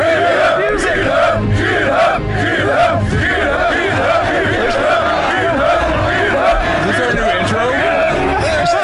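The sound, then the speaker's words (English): A large crowd roars and shouts together in a sustained, dense wall of voices, loud and continuous for the whole stretch, like massed fighters yelling a battle cry. “Somewhere in the crowd, … is like,”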